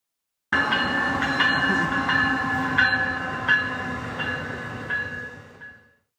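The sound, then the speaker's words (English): A New Jersey Transit commuter train rumbles steadily through Princeton Junction Station in the evening rush hour, with a dense low roar, squealing metallic tones and periodic clanks as cars pass, fading out at the end. No voices are heard. “quite literally, in the rush hour in the evening at Princeton Junction Station on New Jersey Transit”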